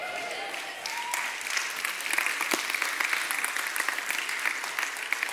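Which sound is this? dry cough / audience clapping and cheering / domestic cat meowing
audience clapping and cheering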